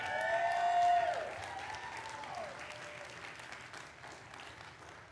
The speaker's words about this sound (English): And so the first couple that is coming up, I need you guys to cheer for these couples as they come up.